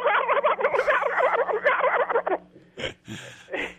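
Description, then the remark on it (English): Four wild turkey gobblers about 60 yards away gobble in a fast, overlapping rattling chorus for a couple of seconds, then a few shorter, harsh gobble bursts follow. No voices are heard. “But I kept her there doing that for 10 minutes with the four gobblers over there at about 60 yards going.”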